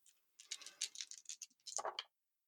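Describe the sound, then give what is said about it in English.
A handful of dice, rolled for a difficulty-one check at plus zero in a game using fate points, rattle and clatter across a hard surface for about a second and a half, a quick burst of small clicks that ends in a louder tumble before settling. “This is a plus zero, so we're going to see where the dice fall.”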